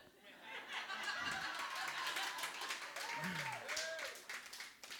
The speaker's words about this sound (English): There's not a Blues fan in this room. And y'all are cheering for the same reason. You hate Boston sports. You cheer.